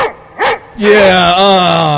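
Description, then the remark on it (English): A single sharp dog bark, then a long, wavering, drawn-out howling bark that stays loud for over a second. “I hear him from the great beyond.”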